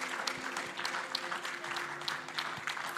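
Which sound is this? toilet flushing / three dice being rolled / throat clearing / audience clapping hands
audience clapping hands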